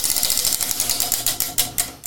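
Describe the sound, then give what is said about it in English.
A spinning wheel clicks rapidly, its sharp ticks starting as a fast rattle and gradually spacing out as it slows. The clicks are crisp and bright, with no voices. “Spin, spirit of the wheel.”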